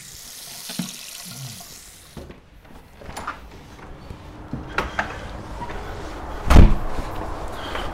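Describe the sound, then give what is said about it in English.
A person with a backpack heads out a front door in the morning: a short burst of running water at the start, then the door opens with a few scattered knocks and rattles and shuts with one loud thud near the end. “fills his backpack with supplies, and heads out the front door.”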